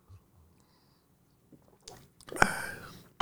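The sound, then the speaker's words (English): A short slurp of someone sipping coffee after a near-silent pause, with a wet mouth sound and a breathy swallow at the end. No one speaks. “All right, so I've been saying the phrase faith-based a lot, and I'm going to take a second to get a sip of my coffee.”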